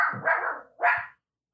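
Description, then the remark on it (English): A dog barks twice, a drawn-out, fairly loud bark followed by a shorter, sharper one, then silence. No one speaks. “The dog is working.”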